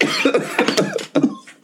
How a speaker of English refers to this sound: So we cough all the time. It's pretty classic. Laughing into coughing.